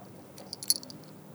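A small bell on a cat jingles in a quick cluster of bright, tinkling rings, fairly soft, with no voices present.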